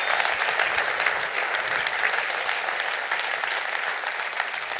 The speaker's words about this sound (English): Let's clap our hands and rejoice for that in the name of the Lord right now.